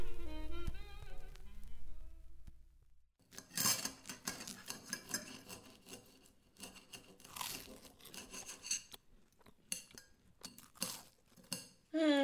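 Cutlery clinks and scrapes against plates at a dinner in an irregular, busy patter of sharp metallic ticks as someone picks at their food, following a few seconds of soft sustained tonal music at the start.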